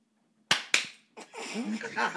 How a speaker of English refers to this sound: You can't clap at the same time, though. Like, as last time. Does that make sense?